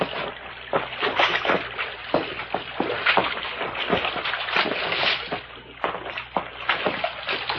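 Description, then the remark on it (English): Footsteps slosh through shallow creek water over rocks in a ravine in a steady, uneven stride, each step a splashy slap over a continuous wet churning, with no voices. “Water's getting a little deeper along here.”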